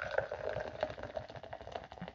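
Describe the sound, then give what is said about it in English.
Grape-flavoured Health Aid Kombucha (Grape Vibes) pours into a glass with a steady bubbling, fizzy trickle, fairly quiet, the liquid gurgling continuously for a couple of seconds with no talking. “And this is a very, very great kombucha here. It's got that good grape taste. And I'm opening it up right now.”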